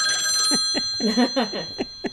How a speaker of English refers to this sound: Adam, answer the phone. No, Paula, we're doing fine without a phone call on this show. We could just let that ring.